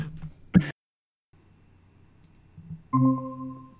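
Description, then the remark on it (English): A sharp clatter of computer keys as a cat dashes across a keyboard and hits the power button, followed by a quiet rumble and then a sustained harmonic tone. No one speaks. “She dashed across my keyboard and happened to hit the power button, which is like, it not even easy to press.”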